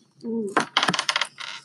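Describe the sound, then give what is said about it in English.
A green ten-sided die, rolled for a perception roll, clatters across a hard tabletop in a quick series of sharp, rattling bounces before settling, fairly loud, after a brief low hum at the start. “The green dice is a 10-sided dice.”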